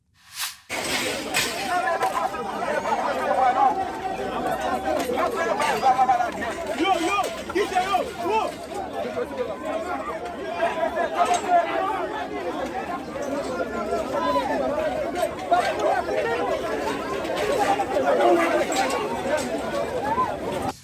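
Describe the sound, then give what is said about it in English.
A large crowd of migrants, apparently from Haiti, breaks through barriers at a refugee office in Mexico: a loud, continuous commotion, many overlapping voices shouting and clamoring at once for about twenty seconds, with scuffling movement underneath and no single voice standing out. “This was the scene in Mexico recently, as yet another large group of migrants, apparently from Haiti, broke through barriers at a refugee office.”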